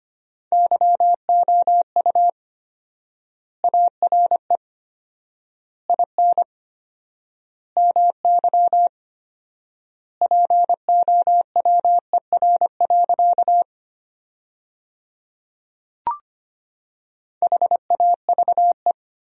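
Rapid Morse code beeps at 25 words per minute with 4x word spacing, sending sentences built from the top 500 words, in a steady mid-pitched tone, short dots and dashes grouped into words separated by long pauses, with one brief click partway through. No voices.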